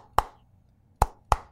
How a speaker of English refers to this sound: we enjoyed when Seth Rollins went to see Roman Reigns and knocked on the door like this.